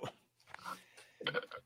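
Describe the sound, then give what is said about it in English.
A short burp rumbles out near the end, preceded by a few soft, wet mouth and chewing-like noises, all fairly quiet with no talking. “I got a burp.”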